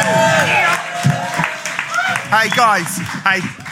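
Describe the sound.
A crowd cheers and whoops loudly for a few seconds at the start of the second half of the Right Axe Big Fat Alternative Quiz of 2019, with rising shouts cutting through a steady wash of clapping and voices.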